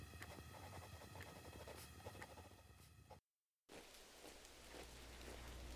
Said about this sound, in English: Oh, Christ, it was another day of freezing rain and sleet.